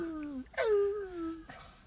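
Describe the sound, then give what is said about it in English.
A female Blue Heeler dog, heard from across the street, lets out a drawn-out, wavering howl that slides downward, broken by a short whimpering break, then trails off into a quieter whine. It's clear, with no talking. “We're across the street, and I can still hear him barking.”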